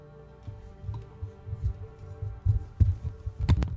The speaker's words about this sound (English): Somebody's microphone's humming.